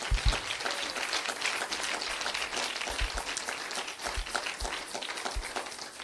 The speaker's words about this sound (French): Est-ce que vous pouvez vous applaudir vous-même?